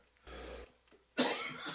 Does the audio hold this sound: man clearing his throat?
yes